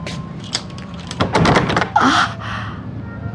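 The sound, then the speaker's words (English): Clatter of a door chain and lock being handled as they are checked: a few soft thunks, then a burst of metallic rattling and a clunk, leaving the chain on and the door locked, with no voices. “Oh, what about the door?”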